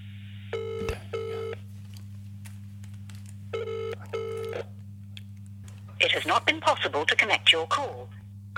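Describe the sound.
A telephone ringback tone sounds in two double-burst rings, steady and electronic over a low hum, as a call is placed to Pamela Anderson. The call does not connect, and a burst of someone speaking follows near the end.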